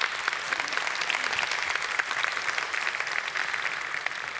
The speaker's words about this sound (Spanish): Cuando yo escuché eso, wow, y sí, vale la pena un aplauso en eso.